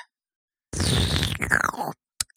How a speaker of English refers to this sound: Oh, so beer and burrito supreme. All right, I'll go first. Let me take a sip of this beer.